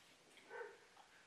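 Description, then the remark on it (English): A single faint dog bark, a short harmonic yelp rising briefly out of a quiet background with no one talking. “Is the mic catching that dog?”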